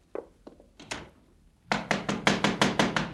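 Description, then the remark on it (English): A few scattered knocks on a door, then a loud, rapid burst of about eight heavy, evenly spaced pounding blows, with no voices. “Just a minute. Don't knock it down.”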